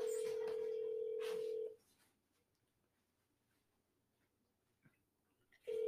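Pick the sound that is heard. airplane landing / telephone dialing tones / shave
telephone dialing tones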